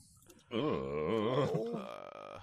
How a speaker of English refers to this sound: The very end, his mother gets a burping fit.